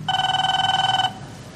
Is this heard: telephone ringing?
yes